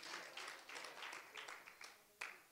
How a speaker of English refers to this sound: Amen. Let's clap our hands. I feel the Holy Ghost moving tonight.